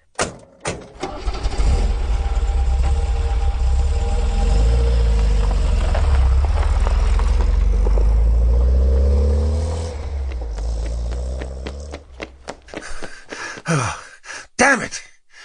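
A car engine rumbles low and steady, then revs with rising pitch as it pulls away, fading after about ten seconds into scattered clicks, thumps and breathy sounds.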